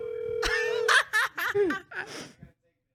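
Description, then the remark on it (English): A steady electronic telephone ring tone of an incoming call sounds for about a second, followed by several short, warbling ringing bursts that fade out, moderately loud. “Uh oh, we got the phone out.”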